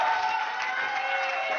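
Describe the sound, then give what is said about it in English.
A crowd, with a cheering section in the front row, cheers and applauds in a steady, dense wash of clapping and voices that holds at an even loudness throughout, with a few higher cheers riding on top. “And I just love the fact that we have the cheering section right here in the front row.”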